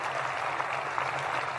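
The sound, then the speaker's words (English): Steady applause from a crowd at Marshall giving themselves a round of applause for developing rockets, a dense wash of many hands clapping at once, sustained and fairly loud throughout with no voices rising above it. “Give yourselves a round of applause for persevering here at Marshall and developing the rockets of the future.”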